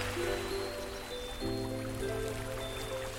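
Soft, continuous water sounds, like gentle waves lapping, wash steadily beneath sustained, calm musical tones that shift chord once partway through. No one speaks.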